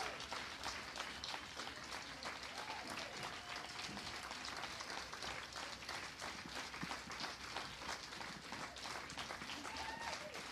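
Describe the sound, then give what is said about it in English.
A church audience praising God claps steadily and densely for about ten seconds, with scattered shouts and voices rising through the sustained applause at a constant, energetic level. “Praise him with the clapping of the hands. Praise him with shouting of your voice.”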